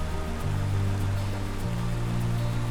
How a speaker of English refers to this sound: You're looking at Willow Creek in Creede, Colorado. And that is contaminated water draining out of the Nelson Tunnel.